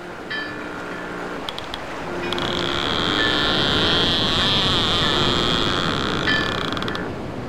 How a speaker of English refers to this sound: I hear that bell from the buoy ringing.